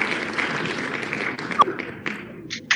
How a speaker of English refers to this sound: I love that it gives you the own applause. That's pretty cool.